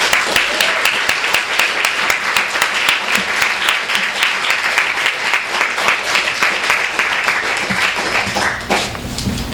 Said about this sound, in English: So let's give a warm round of applause to the one and only Tao Lin.